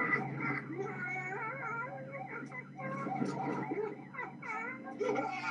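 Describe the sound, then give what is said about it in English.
A Labrador whimpers in a steady stream of high, wavering whines that rise and dip in pitch, continuing for several seconds with only brief breaks. “There's the lab.”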